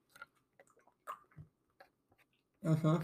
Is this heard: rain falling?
no